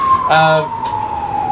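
A fire truck siren wails past outside, holding a steady high tone with a brief, brassy blast layered over it early on, loud and continuous through the short moment.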